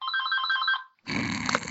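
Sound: telephone ringing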